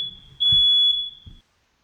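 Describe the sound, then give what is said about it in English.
A loud, piercing smoke alarm tone goes off in a house, holding steady at a high pitch for over a second, with low thumping and rustling noises underneath, then cuts off abruptly into silence. “Steve's fire alarm just went off.”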